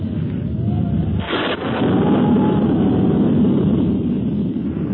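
Strong wind roars steadily and loudly before a storm, a dense rushing noise with a brief harsher gust early on, then a constant heavy blow that never lets up.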